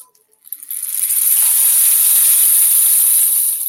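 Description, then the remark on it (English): A homemade rain stick, decorated with shiny painted tape in oriental designs, pours out a steady, dense rattling hiss, like rainfall, building up quickly and holding for about three seconds before tapering off. No voices. “Sounds like a rain.”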